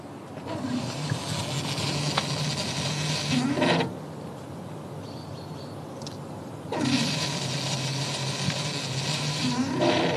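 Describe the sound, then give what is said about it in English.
A hydrogen fuel pump, started by pushing buttons on the machine, fills a vehicle's tank through a nozzle that snaps into the car. It runs with a loud, steady rushing hiss in two long bursts separated by a quieter pause of about three seconds. No one speaks. “Lecoq pushes some buttons on the machine, and it starts running.”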